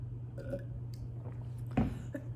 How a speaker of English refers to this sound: I had COVID a few weeks ago and I'm still have a little bit of a cough.